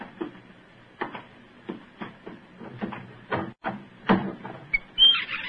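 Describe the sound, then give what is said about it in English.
A crude door of new wood in a corner, built by workmen, creaks and clatters open in a series of uneven knocks and groans, ending with a brief high squeak. No one speaks. “See that new wood forming a crude door in the corner over there?”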